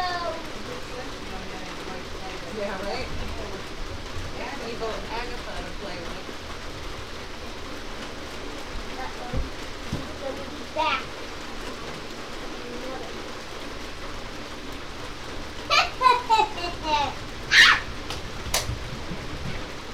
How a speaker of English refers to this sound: It's raining.